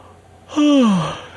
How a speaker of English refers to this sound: And yet, lo and behold, I sit down here to do the podcast, and I'm yawning, and I feel another one coming on you guys right now.